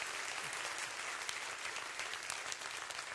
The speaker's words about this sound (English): Why don't you clap for the Lord because you're here and clap for yourself. Amen.